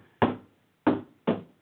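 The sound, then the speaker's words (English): Three loud, sharp hammer blows land at an uneven pace, each a solid thud with a quick ringing decay, separated by short pauses of near silence. No one speaks. “All right, so we let me give you a little rundown here while we have hammering in the background that's going to annoy the shit out of me.”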